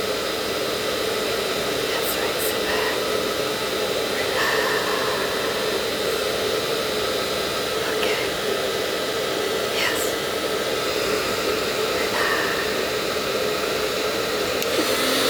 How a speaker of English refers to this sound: Look out the window. Relax. Put your head back on the pillow. That's right. The sound of the airplane engines.